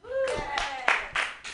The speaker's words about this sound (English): Do you guys do comedy? Like, round of applause if you're a comedian.